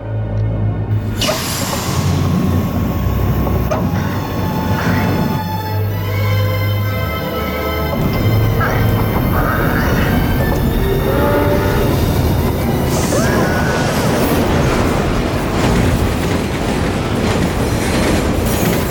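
An oncoming subway train in a film scene roars by loud, a continuous heavy rumble of wheels on rails with shrill metallic squealing and screeching tones rising over it, with no voices.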